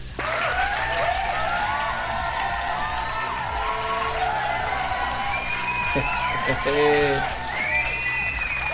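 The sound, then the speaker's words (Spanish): A crowd applauds steadily for several seconds, the dense clapping mixed with high whoops and cheering voices rising over it, holding an even, loud level throughout. “Un pinche aplauso.”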